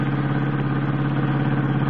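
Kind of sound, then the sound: vehicle, car engine accelerating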